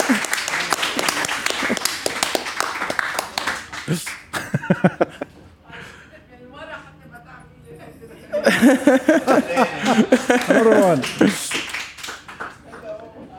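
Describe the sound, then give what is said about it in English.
A crowd claps steadily for about four seconds, a dense wash of applause that fades out, followed by a man talking and some chuckling from the audience. “Najat Saliba, round Thank of applause so for Najat coming.”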